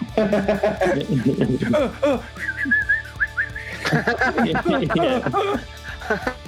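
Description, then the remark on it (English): Someone whistles a short, warbling bird call, a quick run of rising and falling chirps, with people talking and chuckling just before and after. “I was going to suggest you're just desperately making bird noises.”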